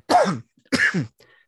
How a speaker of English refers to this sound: Dang it. There it goes again. Coughing.